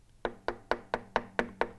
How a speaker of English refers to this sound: Cut to, somebody came knocking at the door.